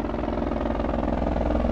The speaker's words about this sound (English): There's a police airship above, about 3 or 4 blocks away.